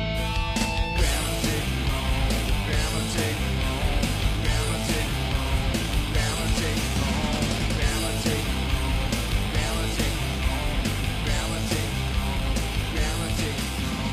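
A loud, distorted grunge rock song plays continuously, with dense crashing guitars and drums and raw, screamed vocals over the top, no talking.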